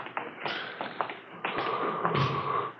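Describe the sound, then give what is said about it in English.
A door opens with a drawn-out creak as Thad Brown comes in, punctuated by several soft taps and knocks of handling, all heard alone with no voices. “It's Thad Brown coming in the door.”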